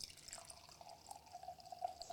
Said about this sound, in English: Just a couple ounces of each, and that's the best sound ever, sound of wine being poured.